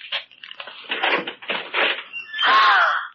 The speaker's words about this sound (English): Now, you. Ralph, open that closet door.